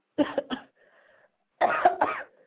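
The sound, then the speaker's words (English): Two bursts of harsh coughing from a person, a quick double cough, a brief pause with a faint tonal hum, then a longer, rougher coughing fit. “Who coughing? No, somebody coughing.”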